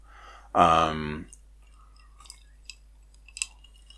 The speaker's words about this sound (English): Sorry, that was very rude. I realised partway through taking that sip that, you know, taking a sip in the middle of a sentence. Wow, what a guy.